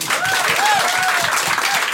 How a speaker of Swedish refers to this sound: Ja, men, och då, fan, applåd